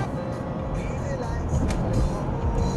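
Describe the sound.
Steady low rumble and road noise from inside a moving car heading from Starkville to Birmingham, Alabama, on the Road Dog tour, a constant droning hum with faint, indistinct voices mixed underneath.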